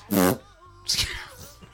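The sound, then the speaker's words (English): A loud, buzzy mouth fart, a short blown raspberry with a rough low rattle, followed by a second, breathier burst about half a second later. No talking. “It's a mouth fart, but still.”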